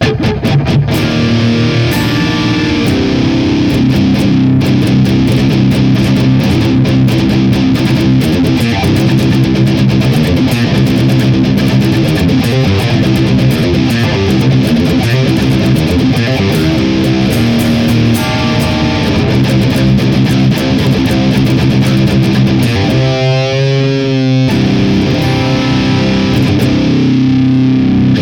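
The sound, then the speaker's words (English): A loud, heavily distorted electric guitar, played in stereo through a Boss DF2 distortion feedbacker pushing KT88 tubes into a greenback 4x12 cabinet, plays thick, sustained chords and riffs for the whole stretch, with a brief warbling, wavering note near the end before the crunchy playing resumes. “This is what it sounds like when we add the DF2 Green KT88 in stereo.”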